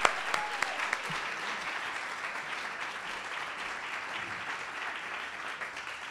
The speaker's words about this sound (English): So I'll stop waffling, and I think we need a big round of applause to encourage him because he's very nervous,